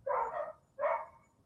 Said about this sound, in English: Hey, the dog's, well, dog's making the argument in the background.